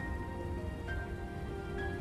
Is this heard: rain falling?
yes